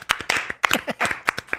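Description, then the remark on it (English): A few people clap their hands in a quick, uneven burst of about a dozen sharp claps, loud and bright, with a faint vocal sound mixed in partway through. “Like some music, some applause.”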